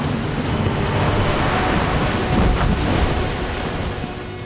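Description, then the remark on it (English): A loud, continuous roar of a mass of water splashing down onto the ground, like heavy surf crashing, swells slightly in the middle and then eases off a little, with no voices present. “watery shape hovered in the air for mere moments before splashing to the ground in an immense roar.”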